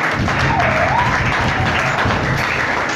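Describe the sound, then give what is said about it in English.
An audience claps hands together in dense, steady applause that stays loud and even throughout, with a brief rising whoop or cheer near the start. “Please clap my brother's hand.”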